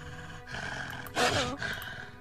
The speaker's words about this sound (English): immediately you are met with the growls and howls of wolves within. And you see a few of them, there's at least two, which immediately like jump out and snarl at you.